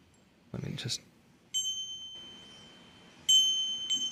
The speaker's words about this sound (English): It has this lasting thing. It's a Bhutanese. Every time the bell rings, it's a Bhutanese bell from Bhutan and. But it's just this beautiful little sound, and I was on a market and I tried 12 different bells until this one sounded just right.